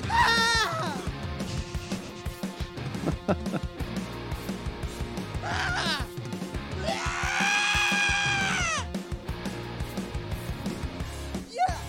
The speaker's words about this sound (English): This is a bunch of experimental sounds of yelling and crying in the background of the song. I don't really completely get it, but it's kind of neat.